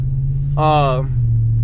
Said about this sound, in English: I'm in my truck right now, and I'm heading to my office.